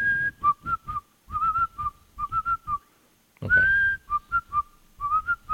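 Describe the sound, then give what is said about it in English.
Someone whistles a short melodic tune in two phrases, clear, with bright sustained and bending notes separated by a brief pause; a voice speaks a quick word near the start. “Wait, whistle it again.”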